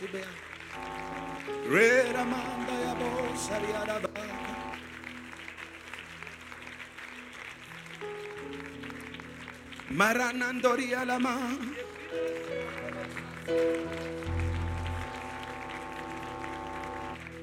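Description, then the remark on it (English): Steady clapping from a crowd of people clapping their hands to God during worship runs throughout, mixed with sustained music and rising sung voices that swell twice. “Can you clap like you're clapping for a Range Rover?”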